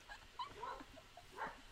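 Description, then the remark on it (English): A dog whimpers and yips in a string of short, high whining cries with brief sharp barks mixed in, fairly faint, with no talking. “It's like a fourth dog that just came in.”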